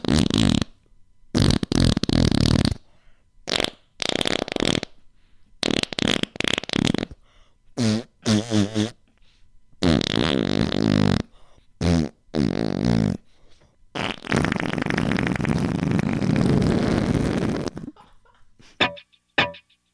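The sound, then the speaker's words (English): A rapid series of loud, sputtering fart sound effects in a parody song, some short and choppy, others long and buzzing, burst out one after another with brief silences between, prominent. “This is what it sounds like when doves fart.”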